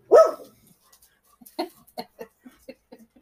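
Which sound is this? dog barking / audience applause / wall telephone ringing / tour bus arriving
dog barking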